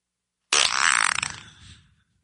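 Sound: fart sound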